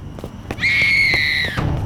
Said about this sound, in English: scream had come from up the hill, up Hope Street. I was sure of it.